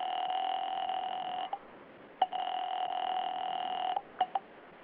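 A telephone being dialed: a steady, fairly loud electronic tone hums, broken several times by sharp clicks and short gaps, with no voices.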